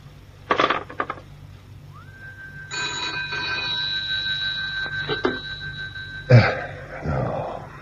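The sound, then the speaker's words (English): A telephone rings in one long, steady, sustained burst lasting a few seconds, with a couple of clicks and knocks before it and a sharp clatter as it stops. No one speaks. “Your phone was engaged the first time I rang, and I'm disturbing you again.”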